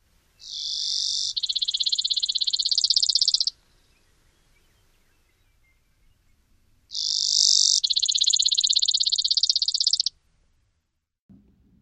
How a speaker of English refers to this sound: And here is the Brewer's short trilling song. Remember, Brewer Sparrow's trill has two parts.